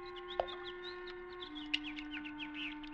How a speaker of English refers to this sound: What's that? Birds playing in the fish pond. Look at them. Happy birds.